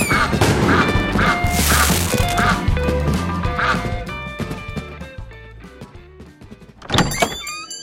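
A cartoon Firecracker goose honks and quacks over and over in loud, nasal bursts, mixed with clattering, busy sound effects and a sharp crash near the end.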